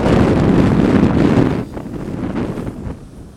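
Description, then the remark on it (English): A loud gust of wind buffets an Apple corded microphone with a heavy, rumbling roar for over a second, then eases into a lighter, fluttering wind noise. “But, whoa, there goes the wind gust.”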